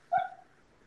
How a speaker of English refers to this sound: You hear my dog having a dream right now? Oh, is that Cash flipping out?